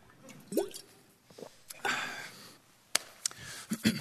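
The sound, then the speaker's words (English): Someone takes a sip of water: soft wet slurps, a couple of gulps and small mouth clicks spread over a few quiet seconds, with no talking. “I'm going to let you write that down while I take a drink of this water.”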